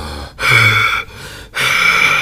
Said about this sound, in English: I don't know if you could hear that. I can hear that. That sounds terrible. Sorry, people. Excellent. That was me breathing as loud and terribly as I could.